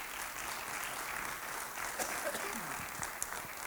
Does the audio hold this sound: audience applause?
yes